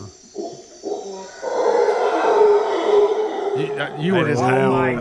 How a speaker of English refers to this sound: There's a howler monkey, I think.